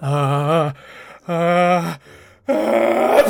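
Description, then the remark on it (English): A voice acts out a big sneeze by a creature called a Sniff: two drawn-out, wavering "ah" sounds with breathy intakes between them, then a loud, harsh, noisy burst to finish. “A big sneeze.”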